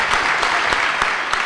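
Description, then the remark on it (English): Dense, steady applause from a crowd for a juggler's three-diablo routine, many hands clapping at once in a continuous wash with a few sharper claps standing out, fairly loud and without any talking. “Big round of applause for that, I think.”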